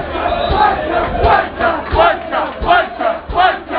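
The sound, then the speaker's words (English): A loud crowd of Wolves football fans roars and shouts in angry, chant-like surges that rise and fall roughly every second, a dense wall of voices demanding a red card after a player is tripped and the referee reaches for a card. “Well, you can hear what the Wolves fans think. They want red.”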